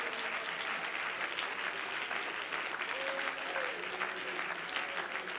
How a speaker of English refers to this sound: Oh, somebody clap your hands and let's praise the Lord.